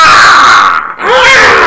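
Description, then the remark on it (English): A voice imitates an eagle's cry with two loud, shrill, strained screeches. A long harsh one breaks briefly, then a second call rises and bends in pitch. “All right, what's the eagle sound like?”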